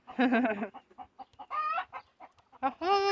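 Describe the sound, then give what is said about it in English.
Several loud chicken clucks and squawks come in short bursts with brief pauses between them, with some quieter clucking in the gaps. “My chicken thought that was funny.”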